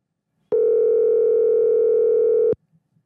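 A single steady two-second burst of a telephone ringing-out tone, loud with a flat buzzy pitch, cutting off abruptly into near silence.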